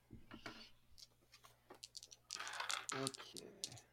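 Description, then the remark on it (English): Dice rattle and click in a quick burst of hard, clattery taps, then tumble and bounce onto a hard floor, with a faint voice murmuring in the background. “Oh, well, that fell on the floor.”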